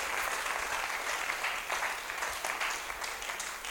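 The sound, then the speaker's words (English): A crowd claps for the Lord as an amen, steadily for several seconds, a dense, even wash of many hands with no pauses, fairly loud throughout and with no voices on top. “Oh, give the Lord a clap of an amen.”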